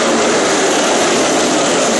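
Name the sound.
race car engine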